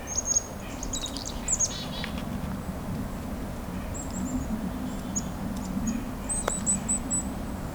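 A couple of chickadees on the ground give short, thin, high-pitched chirps and call notes in scattered bursts, fairly soft, over a steady low rumble of background noise. No one speaks.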